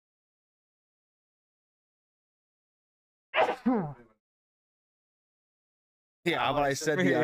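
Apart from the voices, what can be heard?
sneeze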